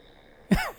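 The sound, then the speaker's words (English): A single short, rough, loud snore from a man, rising abruptly out of near-silence and fading within a fraction of a second. “Let everyone hear me snore.”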